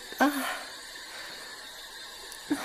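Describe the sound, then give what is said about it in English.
Steady radio static hisses throughout from a spirit box, broken by brief chirpy bursts of garbled broadcast sound at the start and near the end as the radio rapidly scans stations. “Dots projector, and a spirit box. I hate those. No, don't turn it on. Oh, God, that's such an awful noise.”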